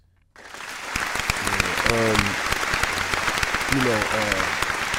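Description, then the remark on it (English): Silence breaks into a sudden burst of audience applause for a guest's wife, steady dense clapping that continues to the end, with a couple of short voiced whoops or cheers rising over it. “A round of applause, please, for the mic.”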